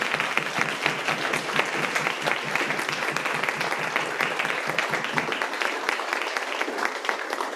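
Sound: audience round of applause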